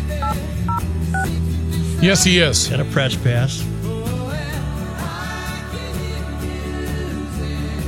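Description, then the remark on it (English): A short series of electronic telephone tones sounds near the start of an outgoing call, followed by people talking over a steady musical background. “Ringing.”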